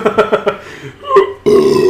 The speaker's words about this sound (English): Sorry, we all the time just burp on here.